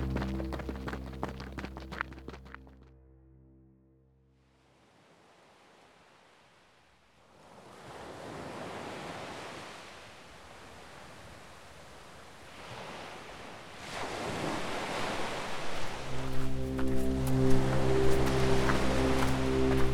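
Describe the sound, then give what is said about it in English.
Ocean waves wash and break on the shore of a wide, empty beach at sunset, in broad, hissing surges that swell and recede, framed by sustained musical tones at the start and returning near the end. “With the sun setting at our back, we finally reach the ocean, then follow the directions on the map and head south.”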